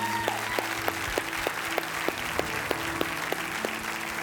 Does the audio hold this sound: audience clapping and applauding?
yes